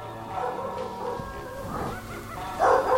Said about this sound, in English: Oh, do you hear the barking?